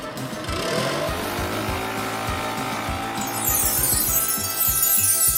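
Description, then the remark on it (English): A leaf blower, used to spread sprinkles over 300 tiny glazed donuts, roars loudly and steadily, its motor droning with a rough, sputtering low rumble and a rising high whoosh near the end. No one speaks. “Oh, get the leaf blower.”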